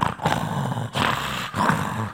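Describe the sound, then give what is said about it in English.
A voice imitates loud, harsh snoring in rasping, growl-like bursts, a rough inhale followed by a rough exhale, repeating in a steady rhythm with brief gaps between. “The problem was he didn't just snore going in, he snored coming out.”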